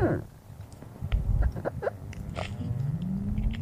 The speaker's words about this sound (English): So here's a clue. It was recorded underwater, off the coast of the Antarctic. And no, it's not a whale. This is the sound of the ice melting in the Antarctic summer.